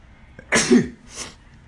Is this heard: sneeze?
yes